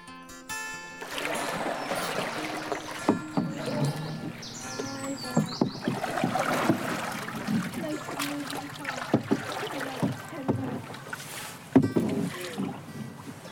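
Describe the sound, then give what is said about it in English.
Paddles dip and splash rhythmically as a canoe glides through calm water along the Somerset Coal Canal on a sunny day, with soft drips and gurgles and faint outdoor ambience around. “So here we are, paddling along the Somerset Coal Canal”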